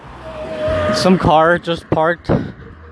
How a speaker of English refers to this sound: Some car just parked where I was skating, so I'm just gonna walk.